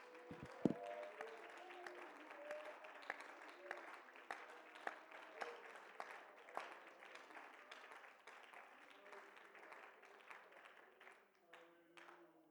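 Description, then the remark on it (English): A church audience claps unto the Lord for about twelve seconds, with sharp irregular claps forming a dense, steady wash of applause. Voices and faint tonal sounds run underneath, and the clapping thins out near the end. “Let's clap unto the Lord.”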